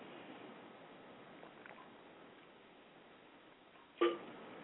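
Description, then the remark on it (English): A steady low hiss fills several quiet seconds, then a single short gulping sound breaks through near the end as someone takes a sip of a drink. “Excuse me one minute, let me get a sip of to drink here.”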